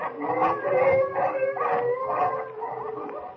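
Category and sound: animal, wolves howling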